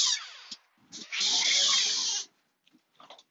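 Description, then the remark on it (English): A store door is opened with a loud, harsh screech, a brief pause, then a sustained grinding, rattling roar lasting about a second, followed by a few faint clicks. “Excuse me while I open the door to my store. It's going to be very loud.”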